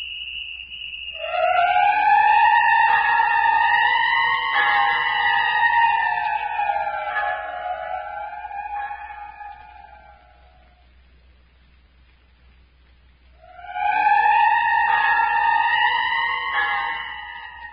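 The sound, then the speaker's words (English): A loud, drawn-out whistle blows twice in the radio drama The City of the Dead by Carlton E. Morse, the first blast long and gently wavering in pitch, then a pause and a second blast starting. There's no talking, only a low background hum. “Don't you hear the whistle?”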